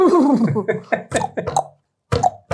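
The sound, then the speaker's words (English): A person imitates a fat horse's whinny in a deep, wobbling voice, a long quavering call breaking into choppy bursts, then a short pause and one more gruff burst, fairly loud. “That sounds like a horse who's about to fall off the trees.”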